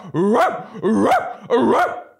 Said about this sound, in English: Fucking dogs barking on porches till 2 a.m.